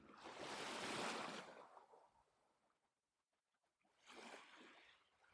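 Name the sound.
gentle ocean waves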